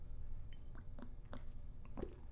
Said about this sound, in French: Mais pas avant une petite gorgée de thé à nouveau, si vous me permettez.